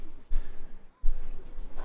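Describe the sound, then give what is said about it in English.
A dog whimpers softly in a room, letting out a few brief, thin high-pitched whines over low background noise, with a short silent gap midway. “I can't have them in here forever because they're kind of annoying when it comes time to trying to do things.”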